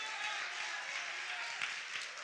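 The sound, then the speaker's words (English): An audience claps together during a church sermon in a steady, dense wash of applause that holds for about two seconds, with no voices standing out. “And for eight, y'all be clapping a lot louder than that, y'all.”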